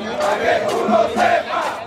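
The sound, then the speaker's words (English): A large crowd of cockfighters marching through the streets of San Juan, Puerto Rico, shouts and chants together, a steady, loud roar of many voices with pitched yells rising above it in repeated surges. “Thousands of them from across the island took buses and carpooled into the capital, San Juan, and they marched.”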